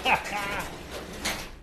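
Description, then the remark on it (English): A garage door rolls open as someone leaves a basement, with a brief high squeal at the start, then a steady grinding rumble that carries on at moderate loudness for a second or so. “So he's basically, we got a garage door that you have to go through to get out of the prison of the basement.”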